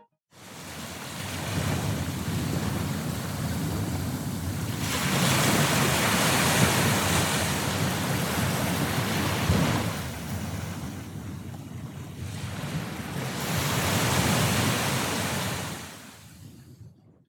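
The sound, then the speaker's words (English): Open-sea waves roll and wash continuously, swelling louder in broad surges around the middle and again near the end, with a steady windy rush beneath and no voices. “Waters. Nothing but waters. Again I was in the middle of the sea.”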